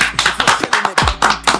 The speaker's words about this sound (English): Round of applause and all that.